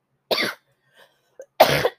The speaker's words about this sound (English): And also I have a cough right now, so yeah, that's another thing.